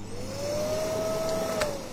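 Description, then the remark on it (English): A vacuum cleaner runs steadily, its motor whining at a slowly rising pitch over a wash of airy rushing noise, with no voices for the full two seconds. “It's our friends at Suck It Vacuum Repair.”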